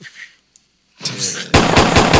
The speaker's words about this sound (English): Those are AJ's gunshots.